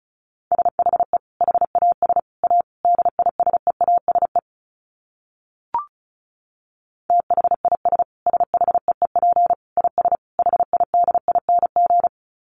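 Rapid Morse code at 35 wpm: a steady mid-pitched tone keyed into quick dots and dashes, sent in two long runs separated by a brief pause with a short blip between them.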